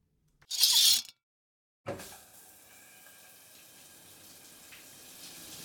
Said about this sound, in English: I stood beneath the scalding hot water, staring at my feet.